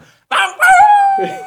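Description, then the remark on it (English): A person imitates a coyote howl to move deer off while in a tree stand after dark: a short yelp, then a loud, sustained, wavering tone that slides gradually downward and fades into a rougher breathy tail. “You got to do the coyote howl and try and get out, you know?”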